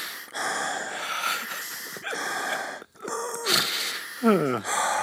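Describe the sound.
A loud, exaggerated sniffing inhale, as if sniffing coffee grounds, drawn out in noisy bursts over several seconds with a brief pause partway through, then ending in a short voiced squeak.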